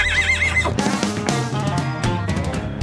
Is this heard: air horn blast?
no